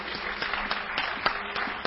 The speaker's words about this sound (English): I can hear real clapping, as opposed to on those, like, you know, worship sets on YouTube